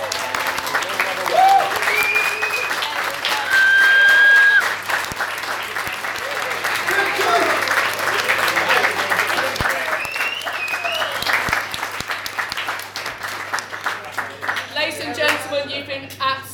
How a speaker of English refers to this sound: But can we have a massive round of applause for the staff?